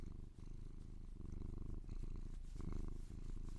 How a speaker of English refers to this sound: Yeah, that's that good stuff right there. Pravi purrs gently into your ear for 20 minutes ASMR.